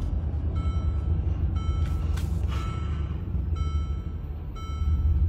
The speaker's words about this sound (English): If you look right now, I'm driving.